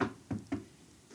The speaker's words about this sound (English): If Toronto were to win the Stanley Cup, knock on wood